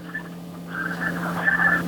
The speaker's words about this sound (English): Because here comes the train. Hear the train? Listen, I'm going to hold the phone up so you can hear it. Okay? Please do. Here's my train.